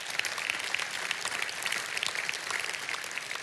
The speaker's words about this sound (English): And I want to say to you, Kingsgate, well done. Let's give one another a round of applause.